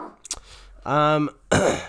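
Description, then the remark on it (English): A dog gives a single loud, drawn-out bark, followed by a harsh, noisy burst; the surroundings are otherwise quiet. “What is he barking at? Oh, real life. Go let him out. I'm going to let the dog out.”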